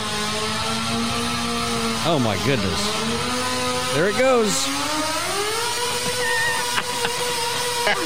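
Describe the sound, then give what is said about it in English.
A loud, droning engine from a mini tractor-pull machine that looks like a riding lawnmower runs throughout, revving up and down sharply twice. A person talks excitedly over it. “It looks like a riding lawnmower, but it doesn't sound like it.”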